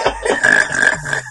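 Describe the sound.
A voice blurts out a wet, buzzing mouth imitation of a fart, one sustained raspy sound about a second long, fairly loud, with no words spoken.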